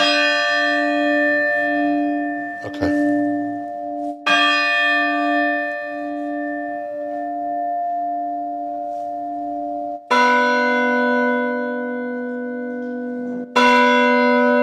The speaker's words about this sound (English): What you want to do is you press down on the rope just enough so the clapper will come swinging and hit the lip of it. You don't want to press down and hold. You just press down and let it snap against the bell.